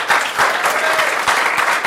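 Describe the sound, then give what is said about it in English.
Dense, steady applause from a crowd, a busy wash of many hands clapping at once with no breaks, fairly loud throughout the two seconds. “A round of applause”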